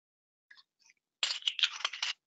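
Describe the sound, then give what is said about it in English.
A wine bottle being cracked open: a couple of faint, brief clicks, then a louder second-long burst of sharp, crackling snaps and a metallic grinding rasp, with no voices. “Do you hear the cracking of the wine bottle?”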